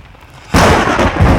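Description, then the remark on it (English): After a brief near-silence, a sudden loud clap of thunder from a beginning storm breaks out and rolls on as a sustained, broad roaring rumble to the end, with no voices. “Oh, the storm begins.”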